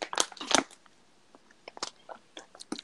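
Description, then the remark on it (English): A plastic water bottle rattles and crinkles in sharp, crunchy bursts, two loud clusters at first, then scattered quieter clicks and crackles with no one talking. “Just the water bottle all rattly in the background and shit.”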